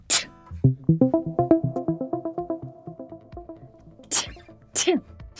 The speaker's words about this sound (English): Double bless you. Is this what happens when you have an epiphany? No. This is what happens when I sit too long in dog hair.